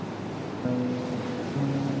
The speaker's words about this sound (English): You could hear the waves of a night time, that's how close it was. It was a hop, step and a jump, as the saying used to go. So, yeah, it wasn't far at all.